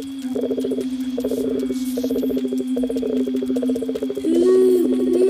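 A dense night chorus of frogs croaking in rapid pulsing bursts over a steady, unbroken trill of crickets, fairly loud throughout, with no voices.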